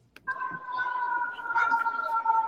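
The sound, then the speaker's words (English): A steady, high siren tone rises abruptly and holds without wavering for a couple of seconds, fairly loud over a low rumble of background noise. “I guarantee those sirens are coming for you.”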